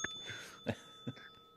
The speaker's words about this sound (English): Ring the bell for Platt DP.